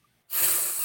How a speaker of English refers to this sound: Bless you.